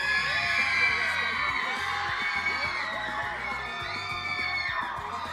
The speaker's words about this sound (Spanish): La batalla está entre las muchachas y la parejita. El aplauso para ellas.